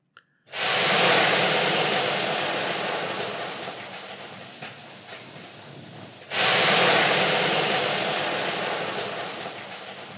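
Loud bursts of hissing steam in a steam bath, a first blast starting abruptly and slowly fading, then a second sudden burst at full strength. No voices, just the broad rushing hiss.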